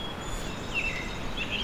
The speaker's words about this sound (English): Song sparrow again.